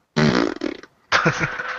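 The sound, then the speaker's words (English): Two loud fart sounds in quick succession, the first long and sputtering with a buzzy low rumble, a brief pause, then a second rasping blast that trails on. “Thank you for that audible fart.”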